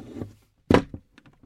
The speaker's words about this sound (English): Did you just slam that cabinet door? Well, why should I have to interrupt my lunch just to close that stupid door?